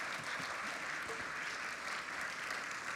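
An audience claps together in steady, dense applause to thank two people for all they have done, holding at an even level for about three seconds, with no voices rising above it.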